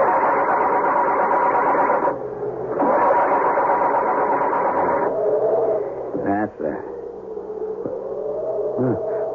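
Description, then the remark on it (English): The damaged engine of a car that has just crashed into a tree is started: a loud, rough droning that cuts out briefly, roars again, then sputters and shifts in pitch with a few uneven revs toward the end. “Muttering a silent, heartfelt prayer, he tries to start it.”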